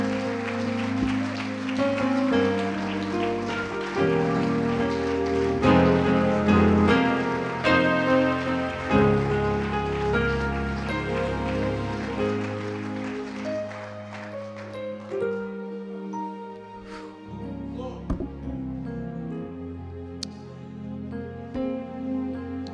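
An audience claps to give Christ the glory, steadily for about twenty seconds, a dense patter of many hands over sustained keyboard or organ chords, thinning out toward the end.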